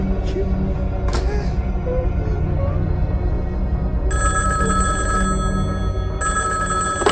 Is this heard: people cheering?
no